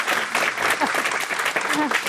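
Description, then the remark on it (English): An audience applauds the event's speakers with dense, steady clapping that holds at an even loudness for about two seconds, with a few faint voices mixed in beneath the claps. “I mean, well, first of all, I think we a big round of applause for all of our amazing speakers.”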